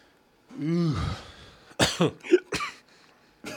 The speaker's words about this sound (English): You good? You all right? Getting the burps and the coughs and things?